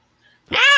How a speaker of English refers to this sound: And there's a kitty saying hello.